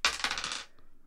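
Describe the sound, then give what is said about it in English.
A ten-sided and a four-sided die clatter and rattle across a hard tabletop in a quick burst of clicks for about half a second, followed by one faint final tap as they settle, fairly quiet; the dice are rolled for damage. “Okay, so roll me those dice twice and then add the 4.”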